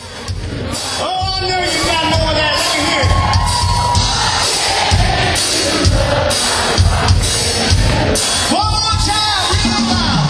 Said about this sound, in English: You notice that on the chorus? They really didn't have to even prompt the crowd. Even if you hadn't heard it in a long time, you instantly recognized it. And you instantly are singing along to it. Even if you try not to. Listen to the crowd sing.